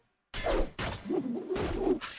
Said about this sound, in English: All those wood creaks, those sword and shield impacts,